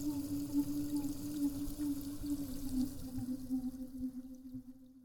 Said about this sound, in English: Maybe I have a synaptic disorder and nothing but this exact environment can soothe my brain. Or maybe it's simpler than that, and I just like barbecuing in the rain.